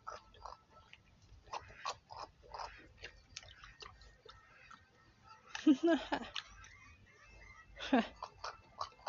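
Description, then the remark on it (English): A pit bull named Piggy laps water from a pond in quick, rhythmic slurps, with a couple of louder, splashier gulps partway through and near the end. “That's him drinking from our pond.”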